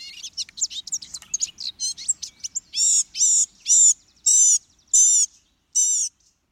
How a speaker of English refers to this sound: The biggest surprise about this tiny bird is its ability to mimic other birds' voices. In the course of a male's long, squeaky song, he may sing samples of jays, tanagers, nuthatches, warblers, and many other birds he's heard.